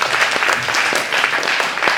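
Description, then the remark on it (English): An audience claps their hands for themselves in a dense, steady burst of applause, many overlapping claps forming a continuous bright patter that stays loud throughout. “One more time, clap your hands for yourself.”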